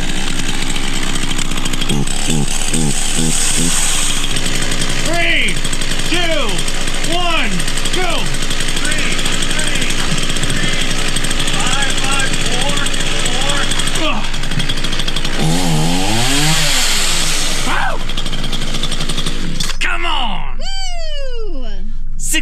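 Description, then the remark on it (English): A chainsaw engine runs continuously, loud and droning, its pitch rising and falling with revving, while a man balances the running chainsaw on his chin for a Guinness World Record distance; people count down, cheer and call out over it. “set the Guinness World Record for the farthest distance balancing a running chainsaw on his chin.”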